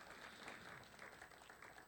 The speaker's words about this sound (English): Absolutely. Give a hand clap.